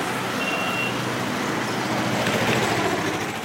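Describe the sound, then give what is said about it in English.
A dense, steady roar of congested city traffic in Dhaka, Bangladesh, fills the scene, with engines rumbling continuously and a brief high-pitched beep cutting through early on. No one speaks. “In Dhaka, the traffic is satanic in its congestion”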